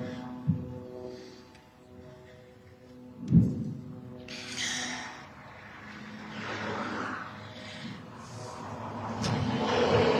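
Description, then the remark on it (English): Continuous traffic rumble, mostly military vehicles going in and out of a zone, with engine hum rising and falling as vehicles pass by, a couple of sharp knocks, and a broader swell of noise later, no one speaking. “I don't know if you noticed, but amidst all of this, there are still some traffic going by.”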